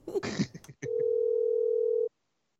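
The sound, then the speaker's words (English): The ringback tone of an outgoing phone call sounds once, a steady electronic hum lasting just over a second, after a brief burst of rustling handling noise; no one speaks. “Can you hear the ringing?”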